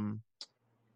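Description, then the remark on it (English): A voice trails off, then a single sharp tap on a computer keyboard, followed by quiet hum. “Sorry, like, I hit my keyboard and Siri popped up on my computer and it threw me off.”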